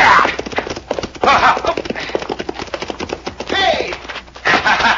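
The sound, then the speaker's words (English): The horse Diablo's hooves gallop in a fast, steady rhythm of loud clip-clops, with a brief whinny-like cry partway through and busy motion throughout, as his rider nearly catches up with a man to rope him. “Nearly caught up with him. Now we will rope him.”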